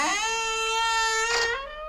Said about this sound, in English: And that creaking door tells us that we have now entered the manor.